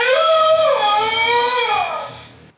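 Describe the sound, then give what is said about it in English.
A single long howl, apparently from a big wolf kept at the Department of Zoology, a loud, sustained wavering cry that rises, holds, then dips and slides lower before fading out after about two and a half seconds. “That sounded like a wolf or something.”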